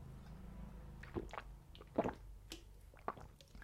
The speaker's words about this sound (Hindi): और मेरे left side में मेरी पानी की बॉटल है जो मैंने अभी उठाई और मैं एक सिप पानी पीने वाला हूँ।